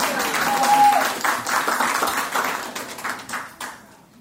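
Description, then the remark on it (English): An audience at a presentation applauds with dense, overlapping clapping that stays steady for a few seconds, then gradually thins and fades out toward the end. “All right, I'll clap for that.”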